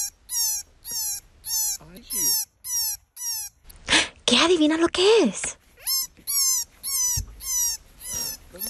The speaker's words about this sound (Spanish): ¡Es un conejito! Así suenan los conejitos cuando están llorando y llamando a su mamá.